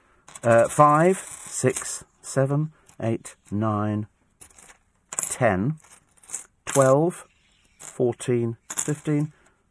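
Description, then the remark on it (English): Loose pocket-change coins clink and jingle in short bursts as they are handled and counted, underneath a person talking steadily throughout. “what I do is, I tend to go and buy things. And then I put the change in my pocket.”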